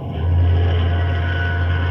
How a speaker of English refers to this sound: Sounds like an ocean liner, right enough. Yes, we're signaling her. Good Scott. There she is, the Gigantic looming out of the fog.